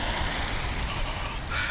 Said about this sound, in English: Christ, I cannot see myself sleeping out in this rain tonight.